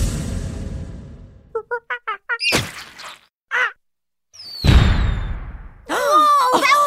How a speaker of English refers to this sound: Well, I'm really fascinated with monkeys, so I would really like to hear a monkey that is getting a banana cream pie in the face.